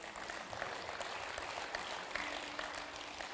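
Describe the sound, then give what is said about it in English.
A crowd at a church applauds steadily, many hands clapping in a dense, continuous patter that stays fairly even in loudness from start to finish, with no voices standing out. “Let's clap for them one more time, shall we?”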